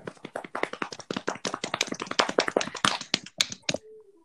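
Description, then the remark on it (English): A small group claps hands in rapid, fairly uneven applause for about four seconds, moderately loud, ending abruptly, followed by a faint brief tone; the clapping introduces a new game segment. “Everyone, please clap for...”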